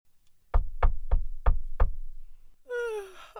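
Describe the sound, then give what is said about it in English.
Five firm knocks on a door in a steady, slightly uneven rhythm, followed by a voice beginning to sing after a brief pause. “go and see who's knocking at the door.”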